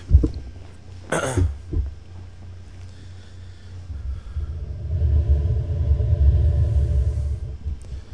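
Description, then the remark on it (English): Someone readjusts their seat: a sharp bump and a smaller knock, followed by a few seconds of low, rumbling creaks and shuffling as the weight settles. Nobody speaks. “Sorry, just readjusting my seat.”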